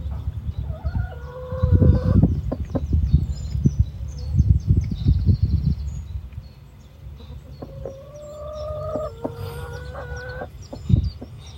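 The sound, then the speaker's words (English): Hens cluck and squawk in a coop, with several harmonic calls rising over rustling and thumping movement, then a quieter stretch before another run of clucks. “Right, let's turf this hen out. I'll prop up the roof of the coop.”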